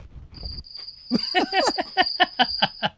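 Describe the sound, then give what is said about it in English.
Crickets chirp in a steady, high-pitched trill, joined after a moment by a quick series of louder, rhythmic pulsing chirps. The sound is fairly loud, with no voices. “We have crickets?”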